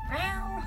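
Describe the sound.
A human voice imitates a cat's meow: one short, fairly loud call that rises and then falls in pitch, heard alone without other talk.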